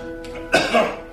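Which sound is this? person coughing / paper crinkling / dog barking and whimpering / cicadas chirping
person coughing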